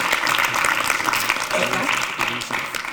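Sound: audience applause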